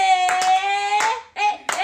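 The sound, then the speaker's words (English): Several sharp hand claps from people clapping along for a show segment called Kiki's Clapback land at a loose, uneven pace over a steady sustained musical tone, loud, with no talking in between. “Y'all clapping with us? Huh? Everybody clap and see them hands.”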